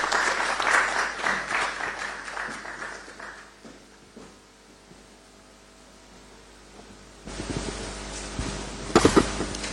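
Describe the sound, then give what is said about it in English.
Audience applause welcoming Deputy Information Minister Fatih Abubakar rises loudly at the start, a dense crackle of many hands clapping that fades over a few seconds, followed by a quieter stretch and a burst of louder bumps and noise near the end. “Let's welcome her with a round of applause.”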